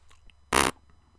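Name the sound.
fart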